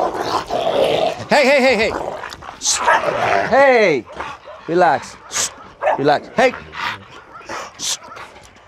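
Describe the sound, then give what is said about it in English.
Several dogs fight at a dog psychology center, with loud, rapid barks, snarls and high yelping whimpers overlapping in frantic bursts, while a man's voice calls out sharply over the commotion. “But even here at the Dog Psychology Center, an innocent game of fetch the ball can still lead to a dog fight.”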